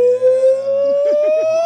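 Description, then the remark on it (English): A person imitates a howler monkey with a single long, steady, rising howl, ending in a few quick wavering pulses as the note holds strong. “What about them howling monkeys? Remember we did that story? They make like a...”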